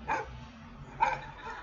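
A dog barks twice, about a second apart, two short sharp woofs with a low background hum between them and no talking.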